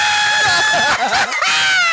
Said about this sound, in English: I'm screaming! Shit!